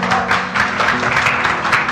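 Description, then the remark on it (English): A church audience claps together for God in a dense, sustained burst of applause that fills the room evenly, with a faint held tone humming underneath. “So before we continue, let's give God a best clap.”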